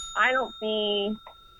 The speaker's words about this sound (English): That's the bell if you could hear that on your end